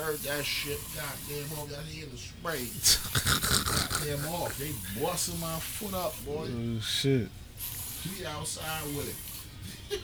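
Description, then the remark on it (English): Short bursts of hissing aerosol spray, Off insect repellent being sprayed outside against mosquitoes, cut through people talking, with a cluster of sprays early on and another brief hiss later. “I heard that shit. Goddamn off. That he in the spray.”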